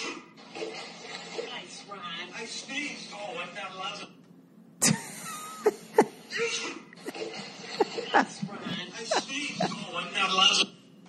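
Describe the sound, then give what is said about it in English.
A man near a pool lets out one sudden, sharp sneeze after a brief pause, making a cat jump and land in the pool; people talk before and after it and a few clattering bumps follow. “This guy sneezes, makes the cat jump and land in a pool.”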